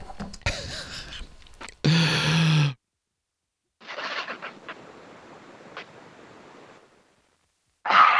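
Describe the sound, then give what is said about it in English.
Someone takes a swig of water: breathy gulping and swallowing noises with a loud sighing exhale, then a quieter stretch of soft swallows and clicks, and no speech. “Let me take a swig of water here.”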